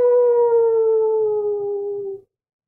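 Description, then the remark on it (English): A single long wolf-like howl from the northeast holds a steady, clear pitch and slowly sinks lower over about two seconds before cutting off into silence. No other sounds accompany it. “And then from the northeast, you hear a ow!”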